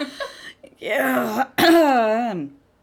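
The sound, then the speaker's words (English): A loud cough into the microphone, with a rough throat-clearing burst that breaks into a drawn-out, strained voiced groan, preceded by a few shorter raspy vocal sounds. “I'm not trying to cough right into the microphone”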